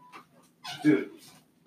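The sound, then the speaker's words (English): A house cat lets out one drawn-out meow, rising and then fading, after a brief faint chirp. No one talks. “I just want you to know I'm not gonna kick our cat, dude.”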